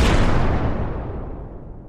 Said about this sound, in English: Excuse me, the Trash Tiny Nader had a malfunction, and so all the whales ate the trash. So there is going to be an explosion soon, so you might want to, run. Run!